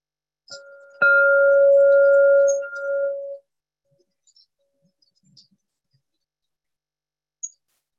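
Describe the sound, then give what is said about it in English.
A single meditation bell, the first of three marking an hour-long sitting, is struck once, its clear mid-pitched tone and higher overtone ringing steadily for about two seconds before fading out. The rest is quiet apart from a few faint clicks. “Hear three bells. One imminently, second midway through, and the final bell 1 hour from now.”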